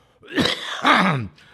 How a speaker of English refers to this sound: Let me clear my throat here.